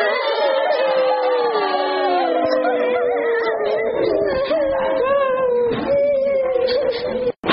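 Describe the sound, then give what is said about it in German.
A white tiger cub cries bitterly in one long, unbroken wailing howl, loud, its whimpering pitch wavering and sliding for several seconds before cutting off. “Da weinte der kleine Kevin bitterlich.”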